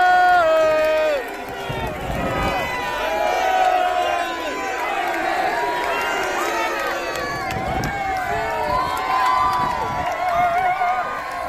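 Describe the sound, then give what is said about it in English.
A large crowd of protesters roars continuously, many voices cheering and shouting at once in a dense, loud wash of sound with overlapping yells rising and falling throughout. “So that's quite a crowd you got down there”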